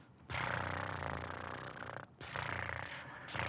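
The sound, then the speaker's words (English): A person makes a continuous, rumbling purr with their voice, imitating a cat, with two brief breaks for breath; steady, no other talking. “Purring like a kitty.”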